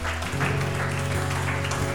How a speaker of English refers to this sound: Maybe we can just give the Lord some praise and clap him, give him a clap offering.